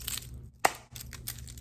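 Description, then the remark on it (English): A single sharp hand clap, made accidentally while trying to fix something, cracks out midway, short and loud, among soft rustling and crinkling handling noises with no speech. “I didn't mean to clap, I was just trying to fix this.”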